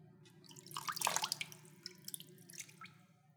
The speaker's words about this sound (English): You drain the water.